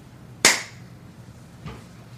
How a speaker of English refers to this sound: Okay. I'm going to clap. You get count 3 seconds, and then whoever starts will start.